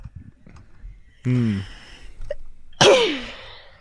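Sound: sneeze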